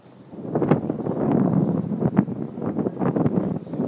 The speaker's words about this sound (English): Windy day. Windy day, I say.